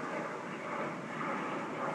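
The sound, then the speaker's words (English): A steady, broad roar of an airplane passing overhead, holding an even, moderately loud level throughout with no voices over it. “And here comes that other airplane.”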